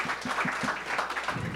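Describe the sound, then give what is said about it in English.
An audience at a debate about coffee and barista competition applauds an opening statement, a dense crackle of many hands clapping at once, with a few stronger rhythmic claps standing out from the wash, sustained throughout without any talking. “Round of applause for Colin's opening statement.”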